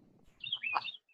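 Birds chirp in a quick burst of bright, high tweets over faint low background rumble, with one thin trailing note at the end; fairly quiet and brief.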